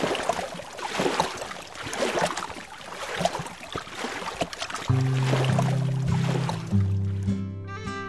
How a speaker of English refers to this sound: I dipped the oar into the water to head back to the shore.